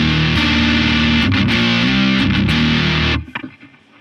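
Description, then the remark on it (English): Electric guitar through the Dan side of a D&M Drive overdrive pedal plays thick, distorted chords for about three seconds, loud, then cuts off and rings out briefly with some fading noise. “The Dan side.”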